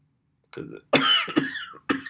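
A raspy coughing fit from a person who is sick: a short throaty rasp followed by three harsh, chesty coughs in quick succession, with no talking.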